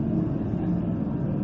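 Steady, dense train station background noise: a constant low rumble with a broad wash of mechanical hum, holding an even level throughout with no distinct voices standing out.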